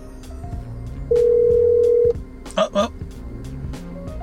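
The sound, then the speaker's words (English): A phone call's ringback tone on Christmas Eve: one loud, steady electronic ring lasting about a second, then a brief crackly burst as the line connects, over a low murmur of background noise. “Have no idea if he'll even pick up. Let's try it though.”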